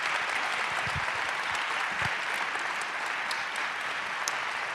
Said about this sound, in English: We want to give you a nice round of applause.